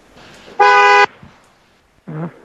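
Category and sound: vehicle, car horn honking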